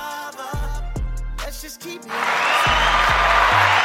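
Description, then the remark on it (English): A beat-driven music track with thumping bass notes plays, and about halfway through a loud, steady wash of applause swells in and continues over the music to the end. “Sorry for the delayed applause.”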